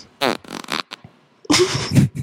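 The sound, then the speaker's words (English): A series of fart noises: several short, buzzy bursts with a brief pause, then a longer, louder, sputtering blast at the end. No one speaks. “Do you fart when you're nervous?”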